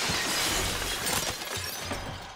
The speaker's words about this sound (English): Unable to get it open, she breaks through its glass panel, with Michael closing in behind.